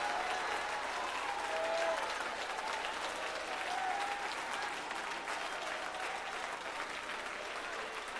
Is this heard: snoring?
no